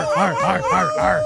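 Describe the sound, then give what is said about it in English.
A human voice mimics a dog, letting out a quick series of arching, yelping barks that stretch into howl-like wails, loud, with a steady high tone running underneath. “Oh, you hear that barking? You hear that howling?”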